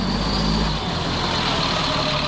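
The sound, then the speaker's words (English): The biodiesel-powered engine of Operation Free's bus idles steadily, a continuous low rumble with a broad mechanical hum, heard alone without any voices. “Operation Free's bus, powered by biodiesel, has rolled through 22 states so far, drumming up support for legislation on clean energy and climate change.”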